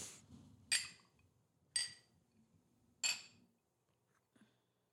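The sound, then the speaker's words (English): Drinking glasses holding 120-proof liquor clink together in a toast three times, each a bright ringing chink spaced about a second apart, over a faint low murmur of background noise. “Cheers.”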